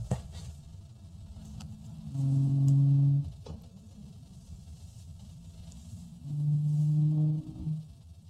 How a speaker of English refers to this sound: They thought the T-Rex sound was, and then it turned out, I think it's going to sound more like a bird. I think it's this one.